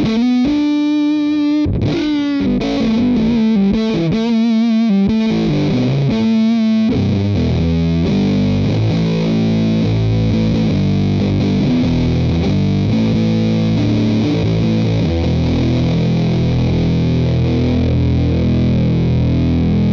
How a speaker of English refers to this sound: Now I can add a lot more gain to it. I don't have that much gain on it. So you notice a little bit of background hum there.